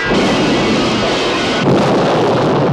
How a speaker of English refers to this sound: Well, this being a Gerry Anderson show, he not only crashed the car, he crashed into, what looked like an area of fuel storage tanks.